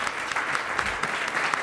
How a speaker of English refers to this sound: Give God a hand clap. Amen.